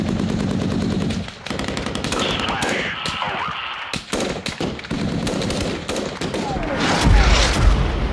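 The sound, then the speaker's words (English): A loud battle soundscape from a high-explosive artillery fire mission: rapid machine-gun bursts and scattered gunshots, with heavy booming artillery blasts and whistling shells cutting through the continuous roar of gunfire. “Artillery Soundscape”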